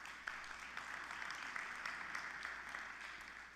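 A crowd gives the Lord a round of applause at a preacher's call, a dense wash of many hands clapping at once, sustained and even for several seconds, with no talking over it.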